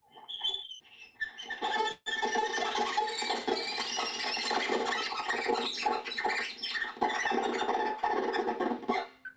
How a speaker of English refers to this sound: Can you give us a taste of the sounds the group you were working with came up with? Well, there's the spider sound, and that was something like this.